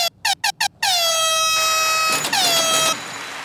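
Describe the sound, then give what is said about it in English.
An air horn sounded for a live food review at Big T's Barbecue fires in several quick staccato bursts, then blares in a long sustained blast with a brief stutter before cutting off, leaving faint background noise. “Now, first off, let's get an air horn.”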